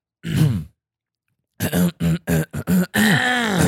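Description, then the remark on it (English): Someone clears their throat: one rough rasp, a brief pause, then a quick run of loud, voiced, grunting hacks that trail into a longer final rumble. “Clear your throat, dude.”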